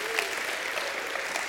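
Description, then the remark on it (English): An audience claps steadily together in praise to God, a dense, even wash of many hands with no pauses, holding a constant moderate loudness throughout. “Somebody give God a great hand clap and a shout of praise.”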